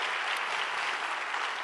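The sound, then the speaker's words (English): A church audience applauds steadily for people who have just joined the community, a dense, even wash of many hands clapping at once with no pauses, no talking, and no single clap standing out. “So can we take a moment and give a big hand clap for all those that have now just become a part of this community?”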